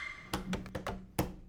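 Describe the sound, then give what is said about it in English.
A woman, pushed from behind, falls forward down a flight of stairs into a basement: five or so heavy, dull thuds in quick, uneven succession, loud, with no voices. “She fell forward down a flight of stairs.”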